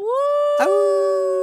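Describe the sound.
A human voice imitates a wolf howl: one loud, sustained rising cry held steady for over a second, with a brief catch partway through and no other sounds.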